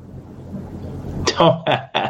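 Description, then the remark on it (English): A quick run of three or four harsh coughs from a participant on an audio call bursts out after a low, muffled rumble, each cough sharp and loud with brief gaps between them. “Don't mute your audio. We can live through the coughing.”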